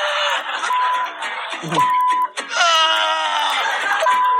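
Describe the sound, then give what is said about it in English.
A person screams and wails in pain from ant stings, loud, with long strained cries that rise and fall almost without a break, pausing only briefly before another sustained howl. “Screaming / and or swearing.”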